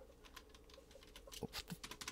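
Quick, irregular clicks of typing on a wonky computer keyboard, a steady run of keystrokes with a few heavier taps near the end, fairly quiet, with no voices.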